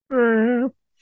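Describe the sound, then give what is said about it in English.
A person vocally imitates the roar a dinosaur lets out in a film scene after sniffing above the water: one sustained, fairly loud groaning cry lasting just over half a second, held at a steady mid pitch and ending abruptly. “And then she dips underneath the water and we get that shot from maybe one of the trailers or something where like then she's underwater and then above we get the dinosaur like sniffing and it just lets out this.”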